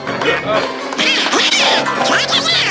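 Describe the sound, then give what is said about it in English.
A cartoon duck voice quacks out rapid, garbled gibberish in a continuous burst, loud, with squawky, buzzing syllables rising and falling in pitch. “Anybody understand what this duck is saying?”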